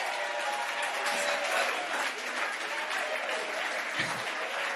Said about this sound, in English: Can you clap your hands?